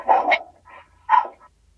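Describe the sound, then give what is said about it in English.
A dog barks in two sharp bursts with a short gap between them, loud and close by, with no one talking. “See, there's one of our Macabre Bobs going off and fangirling on us, just barking their head off.”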